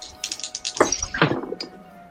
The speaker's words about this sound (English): Tell me how many dice. Roll with advantage.